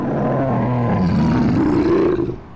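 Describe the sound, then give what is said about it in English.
A deep, sustained creature roar rumbles loudly for a couple of seconds, its growling tone rising in pitch before cutting off. No voices, just the powerful bellow alone. “A roar sounded behind him.”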